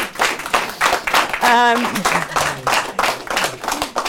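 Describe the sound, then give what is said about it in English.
An audience claps steadily, a dense crackle of many hands lasting the whole few seconds, with a voice briefly whooping over the applause. “And I appreciate that you've clapped for that, and I appreciate all these years later that you understand why that is so appalling.”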